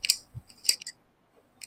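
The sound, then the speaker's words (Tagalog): A few sharp mechanical clicks from a pen, irregularly spaced with a soft thump among them and brief quiet gaps, heard alone without any voices. “It's a pen clicking.”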